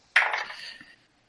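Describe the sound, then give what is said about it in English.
Ten-sided dice, numbered 0 to 9, clatter onto a table in a bright, clicky rattle that starts sharply and tumbles for about a second before settling into silence. No one speaks. “Fortunately, it's the only dice I'm rolling, so it doesn't affect my OCD.”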